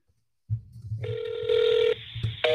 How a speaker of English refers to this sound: Don't punch in phone numbers that I can't.